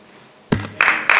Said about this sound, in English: Thank you. Can we refrain from clapping? It takes up time.